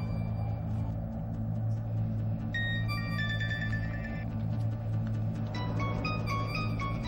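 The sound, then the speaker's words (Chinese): A phone rings for a call from Singapore, with a bright electronic melody in two bursts of stepping tones, heard over a steady low rumble like a running engine or room hum, with no talking. “新加坡打嚟噶”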